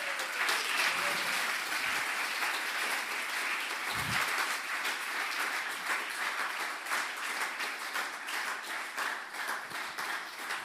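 A crowd applauds steadily for two newly hired staff members being introduced on stage, many hands clapping in a dense, continuous patter that holds its level for the whole stretch before thinning slightly at the end.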